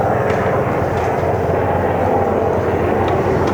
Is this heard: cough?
no